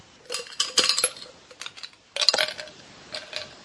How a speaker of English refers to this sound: Is that ice or dice? Ice. Yes, I see that now, unless you are chomping on your dice.